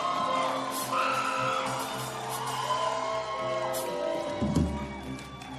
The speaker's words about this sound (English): Give a shout of praise to Jesus, somebody. Shout to your neighbor since you are disturbing. Yeah. If your neighbor doesn't complain, yeah, you haven't shouted well.